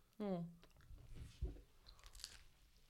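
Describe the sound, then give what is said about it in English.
Loud, close-up crunchy chewing, with several irregular bites and crunches following a short vocal sound at the start, then fainter clicks near the end. “Chew off the mic.”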